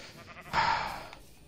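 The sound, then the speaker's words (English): A single short, slightly synthetic sheep bleat from a video game, bright and wavering, rising abruptly and fading over about half a second against a quiet background. “Alright, so once this is done, I can actually colour the sheep whatever I want to.”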